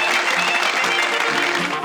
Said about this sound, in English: All right, let's get a round of applause for the …, everybody. Let's go.